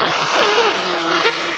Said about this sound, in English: Like, it'll be like little changes, like, I'll blow my nose here. Wait 1 sec.